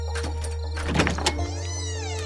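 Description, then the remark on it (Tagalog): A door is opened: a short clunk and rattle in the middle, set against a steady low hum, then a smooth whirring tone that rises and falls. No one speaks. “Tabi nga, bubuksan pa yung pinto.”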